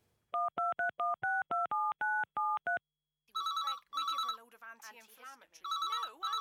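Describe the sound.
A quick run of about eleven crisp, evenly spaced touch-tone beeps as a number is dialed, followed by a steady telephone ringing tone mixed with voices talking underneath.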